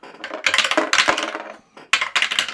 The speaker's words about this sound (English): Let's roll dice. Okay.